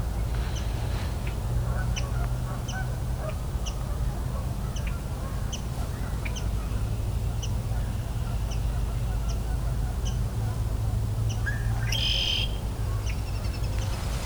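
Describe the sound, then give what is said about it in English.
Ducks call in short bursts across a steady low outdoor rumble, with a louder cluster of calls near the end, while faint, evenly spaced chirps repeat in the background. “Some more ducks.”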